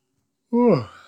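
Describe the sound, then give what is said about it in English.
A single short yawn, fairly loud after a moment of silence, its voiced tone sliding downward before trailing off into a breathy exhale. “Just a little yawn.”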